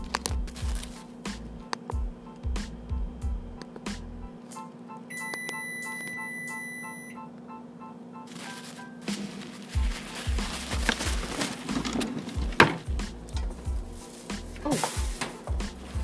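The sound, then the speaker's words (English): Kitchen clatter and a short run of electronic beeps give way to a steady rush of tap water as a green apple is washed under the stream for several seconds. “And I'm actually just gonna wash that really quick because I didn't do that ahead of time.”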